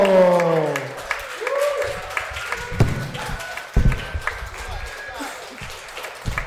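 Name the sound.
audience clapping and cheering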